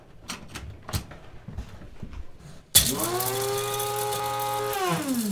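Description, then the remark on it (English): A few soft clicks and knocks, then an electric blender grinding spices including powdered ginger bursts on with a loud, steady grinding whir and a droning whine that dips in pitch as it slows near the end. “And so to make it perfect, I like to put everything in the blender.”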